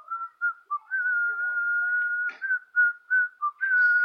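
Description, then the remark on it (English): A person whistles the tune of a song, a clear single pitch gliding through short notes and one long held tone, fairly loud with no talking. “Those whistles, that gives you an idea what the song sounds like if you can't pull up YouTube and listen.”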